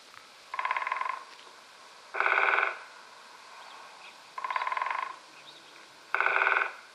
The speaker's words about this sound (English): A woodpecker hammers at the tree to communicate with potential mates and rivals.